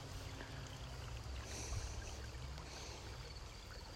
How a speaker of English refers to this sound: And that cool brook of water right here behind me, it might as well be 5 million miles away, because you'll never get it to touch your lips.